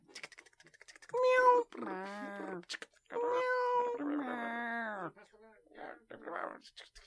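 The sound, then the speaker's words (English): Several kittens, one a Scottish Fold, meow loudly and insistently from a basket in an office, long wavering cries overlapping one after another, with faint tapping and softer sounds between them. “Why are you waving kittens at me? They're so cute, aren't they? No, they're really loud.”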